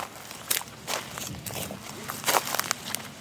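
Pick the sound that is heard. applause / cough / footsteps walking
footsteps walking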